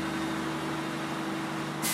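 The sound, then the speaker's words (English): A train's diesel engine, just started up, runs with a steady, droning low hum and broad rumble while air pressure is built up, then a short sharp burst of hissing air breaks in right at the end. “The first thing you do, you start the engine up.”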